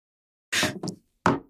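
An egg is cracked and broken into a glass for a prairie oyster-style drink: two quick, sharp crunching taps in close succession, a short pause, then a third brisk knock. There is no talking.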